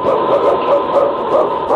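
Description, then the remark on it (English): King, a husky lead sled dog in the radio show Challenge of the Yukon, barks loudly and excitedly in a rapid, steady series of yelps and bow-wows, with no talking over it. “It's King, swiftest and strongest lead dog of the North Country, blazing the trail for Sergeant Preston of the Northwest Mounted Police in his relentless pursuit of lawbreakers.”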